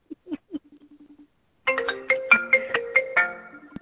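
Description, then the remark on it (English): A phone ringtone plays, a few short electronic blips and a soft tone at first, then a loud, bright melodic ringtone with rapid repeated notes. “Oh, somebody's phone's going off, and it's not mine.”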